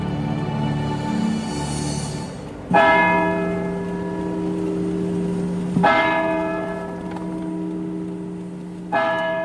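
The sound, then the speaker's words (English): A church bell tolls the Angelus at 6 o'clock on Midwest Radio in slow, evenly spaced strikes about three seconds apart, each deep clang blooming into a long, humming resonance that lingers until the next stroke. “The time is 6 o'clock. Time to pause for the Angelus.”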